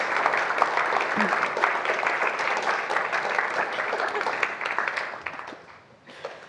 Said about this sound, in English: So if you're one of the four, do you want to come up and we shall warmly applaud you to the stage?